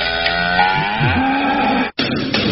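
A cow moos loudly, one long drawn-out bellow with a sliding pitch that stops abruptly near the end, followed by a brief burst of noisy background.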